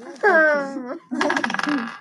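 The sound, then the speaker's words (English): A short drawn-out vocal sound, then a busy clatter of twenty-sided dice tumbling and rattling across a tabletop for about a second, rolled for initiative to decide who goes first in combat. “So you're going to roll dice, roll the 20s.”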